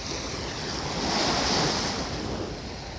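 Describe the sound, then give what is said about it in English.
Waves break steadily on the southern shore of Lake Michigan at Gary, Indiana, USA, a broad, continuous wash of surf that swells slightly louder midway, with some wind rumble and no voices. “Lovely to hear those waves breaking on the southern shores of Lake Michigan there”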